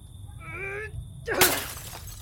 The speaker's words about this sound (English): We've got no movement. I'm going to have to smash the glass. Pass me that log.